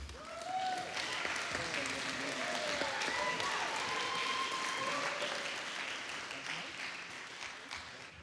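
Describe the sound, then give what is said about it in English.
A church audience stands and claps steadily in a sustained burst of applause for a preacher coming up to share God's word. The applause fades near the end, with cheers and voices mixed in over the clapping. “Would you stand and give her a round of applause as she comes to share God's word?”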